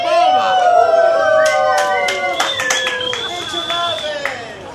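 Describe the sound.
An audience applauds, with scattered sharp claps under a thick layer of rising and falling cheers and high whooping voices, loud and lively throughout.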